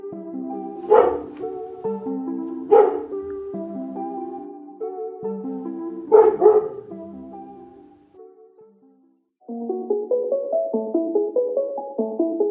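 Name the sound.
dog barking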